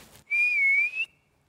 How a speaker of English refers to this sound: I'm going to whistle.